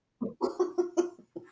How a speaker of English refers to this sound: Hey, shut up, dog. We're working here.